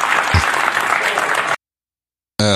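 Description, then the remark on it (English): A crowd applauds loudly in a dense, steady wash of clapping that stops abruptly after about a second and a half. Silence follows, then a voice briefly starts speaking. “All right, so you heard the crowd.”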